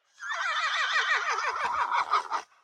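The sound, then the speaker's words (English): A single horse whinny played from a phone app of horse sounds rings out for about two seconds, a loud, shrill neigh with a rapidly wavering pitch that breaks into sputtering snorts at the end, heard alone without voices. “So you have horses, all different horse whinnies.”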